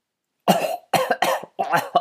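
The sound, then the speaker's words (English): A man, a butler speaking on the telephone, coughs in a quick series of four harsh bursts, each sharp and raspy, with brief pauses between them and no speech. “He began coughing again.”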